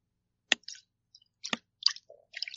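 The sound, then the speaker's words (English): Amaretto sour being poured into lemonade, a few sharp splashy clicks and short fizzy crackles in irregular bursts, fairly quiet, with no talking. “That is my amaretto sour going pouring into my lemonade.”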